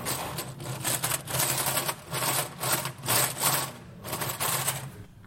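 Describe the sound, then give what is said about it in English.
A mechanical walking machine runs, giving off rhythmic clicking and a steady whirring in repeating bursts about every half second, with no one talking. “This is a mechanical walking machine.”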